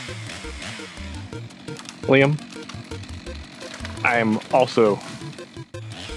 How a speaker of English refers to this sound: so what's a chainsaw noise going in the background?